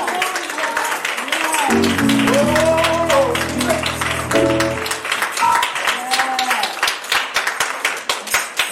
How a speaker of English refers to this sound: Give God a head clap of praise for him.